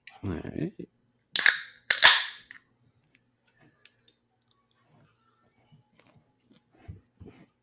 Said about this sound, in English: But before we hop into that, let's crack these beers. or whatever you're drinking. I am not drinking a beer, so you go ahead and crack yours.